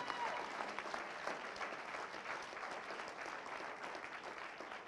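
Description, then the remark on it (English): A crowd clapping for Jesus during a Christmas sermon, a dense, sustained wash of applause that holds at a fairly even level throughout, with faint crowd murmur mixed in. “I wish you could clap better for Jesus.”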